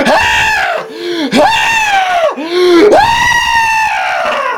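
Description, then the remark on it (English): A voice imitates a young child screaming for his mother in distress: three loud, high, wailing cries in quick succession, each rising and falling, sustained with brief gasps between them. “However, almost immediately after he left to go and get his friend, the young child started screaming for his mother in a very distressed state.”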